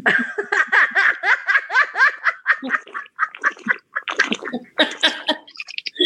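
Rapid, gurgling slurps of water from a water bottle, a quick run of wet, bubbling pulses that break into choppier bursts toward the end, with no talking.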